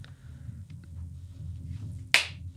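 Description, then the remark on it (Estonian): A single sharp, loud hand clap rings out near the end against a low, steady background rumble with no talking; the clap makes the clap-activated lights in a studio change colour. “Meil on siuksed tuled, et kui sa plaksutad, siis nad vahetavad värvi.”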